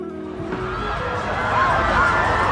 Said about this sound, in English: I want to go where the screaming people are. Let's go over there.